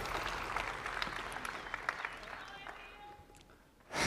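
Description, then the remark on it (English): An audience at an event claps steadily, a dense wash of applause that gradually thins and fades, before a sudden louder burst of sound at the very end. “Big applause for Simon Beard again, guys.”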